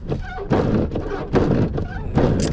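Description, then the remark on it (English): Windshield wiper blades on a pickup truck thump in a steady rhythm, three dull, loud strokes less than a second apart over a low, rumbling background with a faint voice. “Excuse the goddamn windshield wiper blades and my pickup going haywire.”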